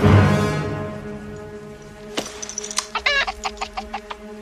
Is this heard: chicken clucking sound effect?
yes